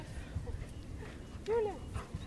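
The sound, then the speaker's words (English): A medical alert assistance dog in training, on a lunchtime exercise break, lets out a short, rising-and-falling whimper, one clear whine lasting about a quarter second, with softer faint whines and low rumbling noise around it. “So these guys are medical alert assistance dogs in training.”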